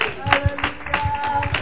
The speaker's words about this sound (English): Come on, somebody. Clap your hands to Jesus right now.